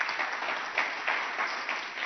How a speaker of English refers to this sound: Clap your hands for Jesus.